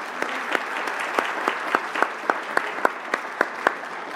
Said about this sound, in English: So can we just give it a round of applause to all those who coordinated?